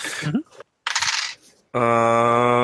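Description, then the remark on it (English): Dice clatter and rattle across a hard surface in two quick bursts, landing on double ones, followed by a steady, bright electronic tone that holds to the end. No one speaks. “I got double ones on my dice. That's a crit fail.”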